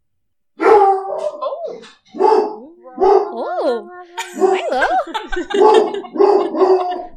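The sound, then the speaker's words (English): A dog named Milo barks loudly at people in the hallway in a rapid series of sharp, howling yaps that rise and fall in pitch, while a person briefly speaks a few words. “He's just barking at people in the hallway.”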